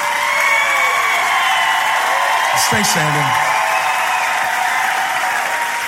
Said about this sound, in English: Now, the people that aren't clapping, I'm not mad at them.